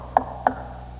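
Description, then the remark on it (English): Two sharp knocks on the door of a house, about a third of a second apart, fairly loud against a quiet, faintly humming background with no voices. “And I went on and knocked.”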